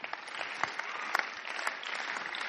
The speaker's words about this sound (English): Okay, I'll forgive you. That was a bit of a golf clap, and I'll forgive you for that. The next time I'm expecting, like, England just scored a goal, all right?